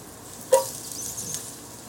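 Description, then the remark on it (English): Chopped garlic sizzles quietly in a pot with onions, a steady soft hiss broken by a sharp pop about halfway through and another faint crackle shortly after. No one speaks. “You can hear it starting to pop and sizzle.”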